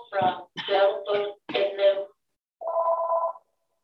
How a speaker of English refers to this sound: Oh, sorry. Excuse me, I forgot to turn off the phone. A surprise.